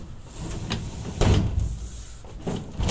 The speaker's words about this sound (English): Oh, shut these doors here.